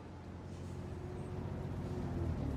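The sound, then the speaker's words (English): A Greyhound bus engine drones steadily at a low pitch, a continuous rumble that holds the same level throughout with no voices. “Interior, Greyhound bus, day.”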